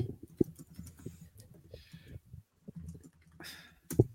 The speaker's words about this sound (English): I'm listening, but I'm also typing.